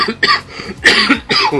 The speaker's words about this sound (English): I'm going to have to cough quickly.